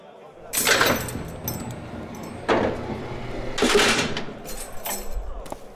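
A heavy prison cell door is opened by a guard coming into an inmate's cell, in the drama series Corrections, with loud metallic clanks and a grinding slide, coming in three distinct bursts over a low background hum.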